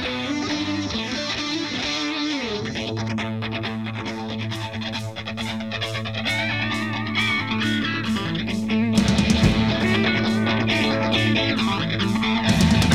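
An electric guitar part on a song's chorus plays bending, sliding lead lines over sustained low notes and steady rhythmic accents, growing fuller and louder partway through, with no voices.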